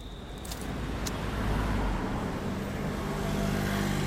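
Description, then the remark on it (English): Steady road traffic in the Chapeltown area of Leeds, Yorkshire, rumbles past late at night, a continuous low engine drone with vehicles swelling and fading as they pass, no voices present. “Car after car passes her by as she tries to flag them down.”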